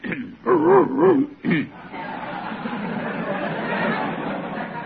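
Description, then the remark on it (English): Three quick yelping, dog-like barks with a wavering pitch, made by a person imitating a dog, come up loud, then give way to a steady murmur of audience chatter and laughter. “Do you have a dog in your pocket?”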